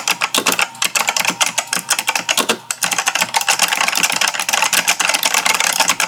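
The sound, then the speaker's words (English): Rapid, dense clattering of computer keyboard keys being pressed down by a phone on speaker propped against the keyboard, loud, continuing without pause for several seconds with no voices. “So I put you on speaker and I propped you up gently, well, I propped the phone up gently against my keyboard. Yes, and that's when I heard this.”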